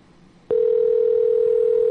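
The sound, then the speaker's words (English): A telephone ringback tone on an outgoing call: after a moment of quiet background hiss, a steady, single-pitched electronic tone switches on and holds loud and unbroken to the end. “All right, at least it's ringing now before it just went to voicemail.”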